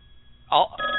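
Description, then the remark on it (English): A telephone rings: a sudden, loud, buzzy burst is followed by a steady electronic tone, slightly tinny, with the line quiet beforehand. “Hey, is that the phone, Doug?”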